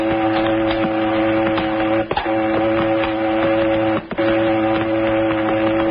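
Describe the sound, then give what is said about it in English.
A cannery boat in the harbor, one of the boats that service the fishing canneries, drones steadily and loudly, its engine a constant hum with layered tones and rhythmic mechanical chatter, broken by two brief dips in the noise. No voices. “That'll be a cannery boat.”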